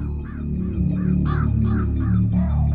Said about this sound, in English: Every time I hear the crow, I just think of Sting. Like, Sting's coming! Yeah. But he was using this before Sting, right?